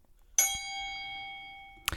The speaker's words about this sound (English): Okay. Maybe we ding the bell. Yeah, I think we're going to ding the bell.